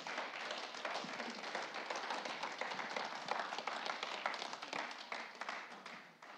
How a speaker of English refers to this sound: Give him a big clap. He's awesome.